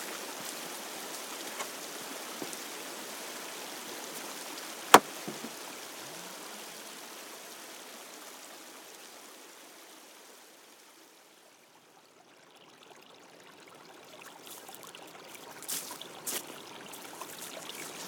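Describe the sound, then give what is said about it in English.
Tinkling water of the River Esk flows in a steady rush, briefly quieting midway before swelling again, with a single sharp knock early on and no voices. “So we'll head off now, we'll go through a kissing gate and escape the chainsaw and find our way up beside the tinkling waters of the River Esk.”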